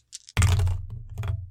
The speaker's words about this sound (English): Why don't you try to persuade them? Yeah, sure. By rolling your dice.